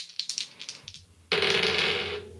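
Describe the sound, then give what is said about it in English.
Two dice, a green one and a blue one, are rolled during a game: a quick run of light, sharp clicks, then a louder, steady rattling roll that lasts about a second before stopping abruptly. No one speaks. “See, the moth is going to roll this green one, and Goldbeard is going to roll this blue one.”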